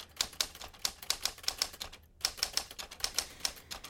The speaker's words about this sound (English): But let's get that over aggressive typewriter out.